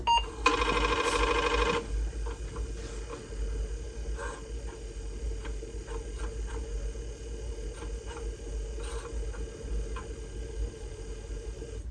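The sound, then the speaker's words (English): An Apple IIe starting up: one loud, buzzy beep lasting just over a second, then the disk drive's steady low whir with intermittent clicks and ticks running to the end. “So the sound of the Apple IIe starting Apple IIe, up.”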